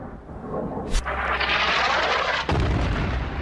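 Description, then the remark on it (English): A loud coalition airstrike explosion bursts in suddenly, followed by a sustained, roaring rumble and a second heavy blast near the end, with deep low-end boom and no voices. “Usually silence follows an explosion, but after one airstrike”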